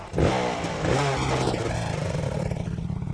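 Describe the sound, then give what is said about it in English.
A Honda-matic motorcycle engine roars down a dirt road, its revving rising and falling with a rough, rattling clatter for a few seconds before settling into a steady throaty drone. “He jumped off the motorcycle in a cloud of dust and ran toward me.”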